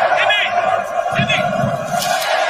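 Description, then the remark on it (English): A big stadium crowd roars and chants "USA" in support of the U.S. team, with loud rhythmic bursts of massed voices rising over a steady wall of cheering. “The crowd is really into the U.S., though.”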